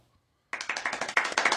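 A quick run of hand claps starts abruptly after a short silence, about ten sharp, bright claps in rapid, slightly uneven rhythm, fairly loud, with no talking over them.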